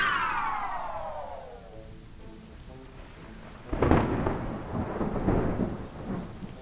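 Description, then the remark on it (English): A falling, whooshing tone fades out, then a sudden loud crack of thunder rolls into the steady hiss of heavy rain, with more rumbles continuing under the downpour. “The rain sure is coming down.”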